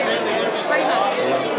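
Dense crowd chatter heard while walking through a crowd, a steady wash of many overlapping voices with no single speaker standing out, holding at a fairly loud, even level throughout.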